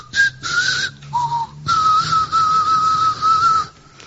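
A man whistles a short melodic tune, the clear tone stepping between notes in phrases with brief pauses, close and fairly loud, with no talking over it.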